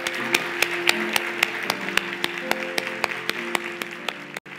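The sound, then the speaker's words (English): An audience claps to applaud the day, in a steady, brisk rhythm, sharp regular claps continuing for several seconds over a low sustained tone, then stopping abruptly. “Let's applaud this day, okay?”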